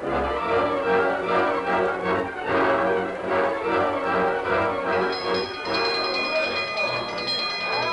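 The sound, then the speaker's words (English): A dense, busy mix of sound with indistinct voices, then a ranch dinner bell starts clanging repeatedly partway through, its bright metal ringing tones sustained over the background. “As the dinner bell clanged, the cowhands poured out of the bunkhouse.”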